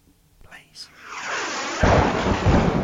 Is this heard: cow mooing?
no